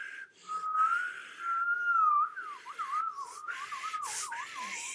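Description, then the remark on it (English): A person attempts to whistle, producing a breathy, airy tone that holds steady at first, then wobbles and warbles unevenly, with no talking. “This is me really trying to whistle.”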